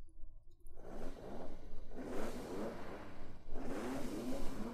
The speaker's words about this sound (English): And you hear out in the distance the sound of an engine. In the distance.